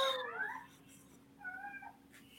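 A female cat that has just woken up meows twice in the background, a drawn-out rising cry followed by a shorter, softer one, with no talking.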